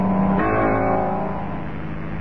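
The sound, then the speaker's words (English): A car engine hums steadily, its low tone shifting upward as the vehicle rolls slowly up a driveway, returning from the village, with no voices present. “Suddenly, I heard a car coming up the drive.”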